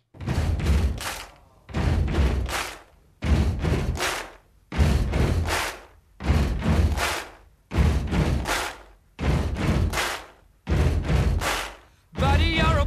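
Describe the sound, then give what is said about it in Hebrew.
A loud, steady stomp-stomp-clap beat made by people sitting on piano stools and banging their hands and feet on drum risers while recording, two heavy thuds then a sharp clap, repeating about eight times in a driving rhythm with no voices. “הם ישבו על כיסאות פסנתר, והם דפקו עם הידיים והרגליים על מתקני ההגבהה לתופים, וכשהם סיימו להקליט את עצמם, הם הזמינו את כל מי שהיה בבניין, וכולם הצטרפו ודפקו על המתקנים.”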